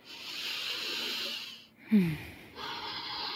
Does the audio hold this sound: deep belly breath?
yes